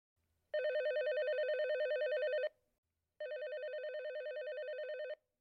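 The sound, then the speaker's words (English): A telephone rings twice, each long electronic trilling burst lasting about two seconds with a short pause between. The ringing is loud, with no voices. “I'll never forget, I picked up the phone and it was my agent, and he said,”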